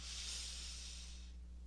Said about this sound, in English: And so let's take a deep breath.